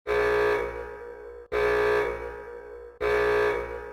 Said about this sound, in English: You're at the zoo in Osaka and suddenly you hear over the loudspeaker a warning siren, then an announcement.